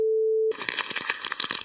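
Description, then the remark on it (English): A brief steady electronic tone cuts off, followed by loud crinkling and crackling as paper is crumpled up, with dense irregular snaps for about a second. “He got the crumpled up paper, which is funny.”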